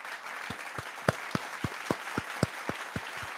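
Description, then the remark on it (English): Canned applause triggered by pressing a button in soundboard software plays on its own for a long time: a steady wash of crowd clapping with a regular beat of sharper, louder claps roughly four times a second, at moderate volume and without any talking. “This is a very long applause.”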